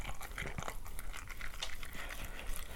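A dog eating a mix of wet and dry food: steady wet smacking and chewing with irregular crunchy clicks and rattles, continuing throughout at moderate loudness with no voices.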